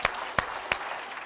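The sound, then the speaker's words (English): A church audience claps unto the Lord during a sermon, a dense wash of hand claps with a few sharper, louder claps landing at a steady, even beat. No one speaks. “Oh, somebody clap your hands unto the Lord tonight.”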